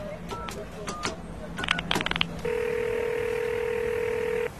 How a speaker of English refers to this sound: Oh, I'd never have thought that I, …, would ever have to use a public phone again. Ah, man.